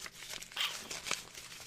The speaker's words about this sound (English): I think I got it crunkled up in this piece of paper.